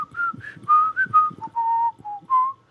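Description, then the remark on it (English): A person whistles a short, lilting tune in a movie trailer, clear, with a string of quick bouncy notes that settle into a few longer held tones. No talking, with light plucked-sounding accompaniment underneath. “And then you just get the little whistle.”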